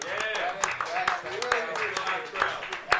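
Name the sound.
round of applause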